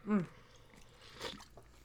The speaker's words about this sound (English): Also, wait, pause. Let me clear my throat with a sip of coffee.